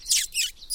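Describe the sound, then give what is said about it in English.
Three quick, high-pitched squeaky notes made to lure small birds closer, fairly clear with brief gaps between them and no talking. “It's often a good way of attracting little birds in, just a few squeaky note noises.”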